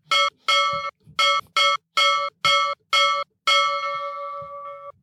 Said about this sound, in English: Sorry. I like that bell.